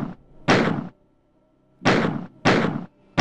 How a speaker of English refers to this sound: It's the pistol from Doom. That is correct.